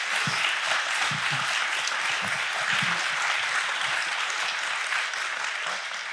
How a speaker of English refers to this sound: Guys, let's give these fathers a round of applause.